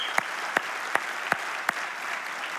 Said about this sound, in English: Hey, would you just give these guys a round of applause?